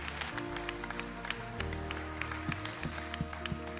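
An audience at a church service claps steadily, welcoming people into God's family, a dense patter of many hands over sustained low musical tones from an instrument playing underneath; no one speaks.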